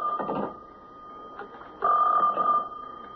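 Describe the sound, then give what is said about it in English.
A special phone rings with two bursts of a bright, buzzing bell, a short one followed by a longer one, with no one talking over it. “Hey, Inspector, that's a special phone. I'll call you right back.”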